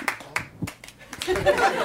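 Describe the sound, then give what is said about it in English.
A small audience claps in a thin, scattered way at the mention of the Great America amusement park: a few separate claps at first, then a brief, denser patter mixed with murmuring and a little laughter. “That's a weird number of people clapping for that.”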